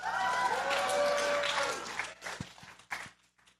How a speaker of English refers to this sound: And I know it's very unlikely that any of you use this, but maybe I could get a round of applause from anyone who likes Alexa.